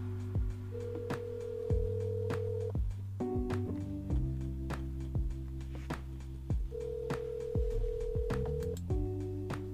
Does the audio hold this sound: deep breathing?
no